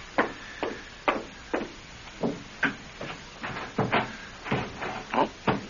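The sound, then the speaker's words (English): A stuck porch door is jerked and rattled over and over by someone trying to get out, a string of sharp wooden thumps and clatters in an uneven rhythm, fairly loud, with no voices. “Oh, the door to the porch is stuck. I can't get out.”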